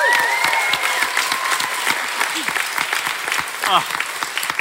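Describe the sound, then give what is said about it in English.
A crowd at the Brisbane Science Festival claps steadily in dense, sustained applause for astronomer Dr. Jessie Christiensen, with a few whoops and cheers rising over the clapping before it begins to thin out. “Please give it up for Dr.”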